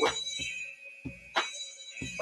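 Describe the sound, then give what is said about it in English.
A fire alarm sounds in a building, 72 floors up, as a steady, high-pitched electronic tone, fairly quiet, with short bursts of noise cutting in every half second or so. “It's a fire alarm, I think.”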